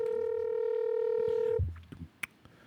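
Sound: telephone dialing tones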